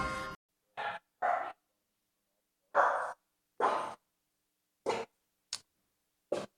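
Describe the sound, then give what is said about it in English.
A small dachshund barks about eight times in short, sharp yaps, loud, with uneven pauses between them and no other sounds around. “Happy dog. I'm real tough. Little dachshund.”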